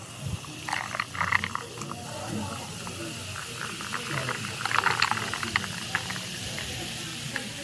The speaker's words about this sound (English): Look at that fizz. Oh. Verner's has a really nice fizz to it. That sounded like a soda radio commercial right there.